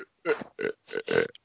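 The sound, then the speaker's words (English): A long, croaky burp, drawn out in three or four rough voiced pushes over about a second and a half, loud and unaccompanied. “That burp I just did better than this fucking movie.”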